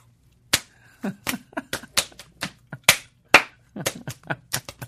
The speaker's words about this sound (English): Well, I'm going to have to do a slap dance.